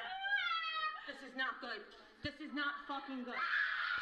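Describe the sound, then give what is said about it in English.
A woman lets out high-pitched, strained screams, one sustained cry at the start and another loud outburst near the end, with agitated voices talking in between. “You're fucking screaming.”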